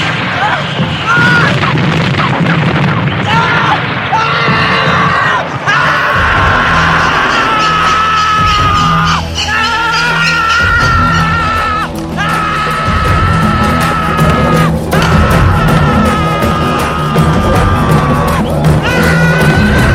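A man screams loudly and at length after a helicopter crash in Vietnam, his raw, strained cries continuing almost without pause over a chaotic backdrop of heavy booms and rumbling noise.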